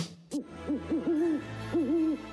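An owl hoots in a short series of calls, a single hoot followed by wavering, drawn-out hoots that rise and fall, clear with no talking.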